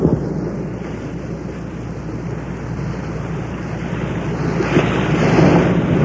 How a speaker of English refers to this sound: And when I was up there, I recorded the sound of the Bering Sea, just the way the sound of this strange, milky sea sounds. And here's the way the sea sounds, just out there.